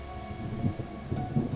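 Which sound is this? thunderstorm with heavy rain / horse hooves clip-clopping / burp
thunderstorm with heavy rain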